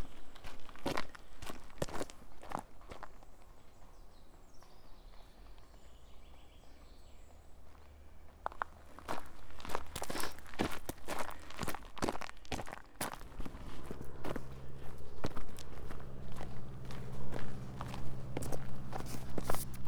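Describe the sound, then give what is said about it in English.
Steady crunching footsteps walk behind a horse along a gravelly track in Whitecross, a Forestry Commission woodland, rhythmic, with faint birdsong in the background and a low rumble growing louder in the second half. “I'm walking along a track behind a horse.”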